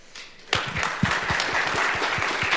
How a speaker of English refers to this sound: So round of applause.